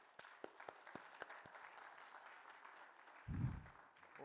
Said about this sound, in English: Can we give God a big clap offering?